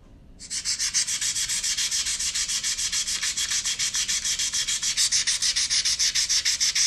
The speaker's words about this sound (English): Sanding? Yep. Sanding wood.